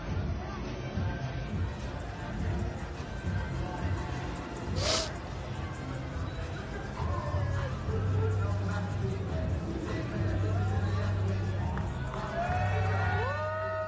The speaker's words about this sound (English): Yeah, they cheering that dude on.